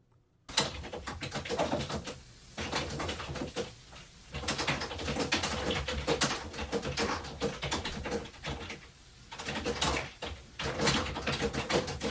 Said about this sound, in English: But meanwhile, loud typing.